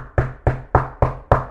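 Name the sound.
knocking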